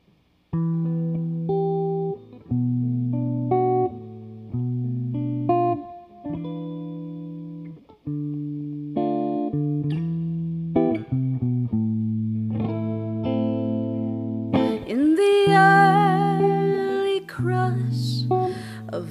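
An instrumental song intro with no singing: sustained, effect-laden keyboard or guitar chords shift steadily in a low-mid register, then a bright, shimmering swell rises near the end.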